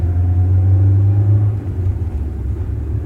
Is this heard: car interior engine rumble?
yes